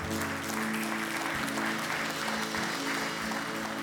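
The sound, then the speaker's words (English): An audience applauds the Lord steadily and loudly for about four seconds, the dense clapping holding an even level throughout, with a sustained low musical tone humming underneath. “Can we give the Lord a clap off one more time?”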